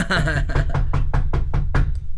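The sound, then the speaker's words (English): Someone raps on an apartment door about six times in a quick, steady series, loud, while a voice talks briefly at the start over a low background hum. “could you get the door for fucking once?”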